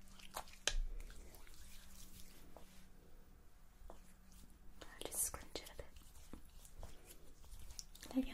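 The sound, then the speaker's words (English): Quiet wet squishing and rubbing as protective oil is worked through a client's hair before it is left to dry naturally, with soft slick clicks and brushing sounds scattered throughout and faint whispering in the background. “Okay, so before you go then, let me just pop some protective oil in your hair.”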